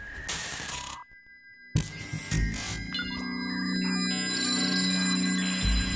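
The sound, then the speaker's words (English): An electronic telephone call tone as a call is placed on the 'Wayback When phone', with a steady high-pitched note and a hiss of noise, then a brief pause and a swelling mix of layered electronic tones and mechanical clicking, with no voices. “And now we're going to give the great man a call. Yeah, let's boot up that Wayback When phone.”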